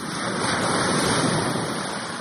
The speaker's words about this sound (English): Let's first of all start with what they described as being waves crashing. All right, here we go. Waves crashing. Help you go to sleep.